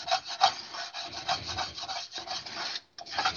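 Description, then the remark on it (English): Steady, gritty scraping across the bottom of a Kaflon-coated skillet that sausage was fried in, a continuous rough rasp with quick back-and-forth strokes and one brief pause near the end, with no talking. “Just going to scrape the bottom of it real quick.”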